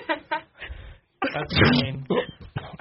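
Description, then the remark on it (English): A few short breathy bursts, a brief silence, then a louder, harsher sneeze-like blast trailing into two quick follow-up bursts, with no talking. “Is that a toot? I think it's a sneeze.”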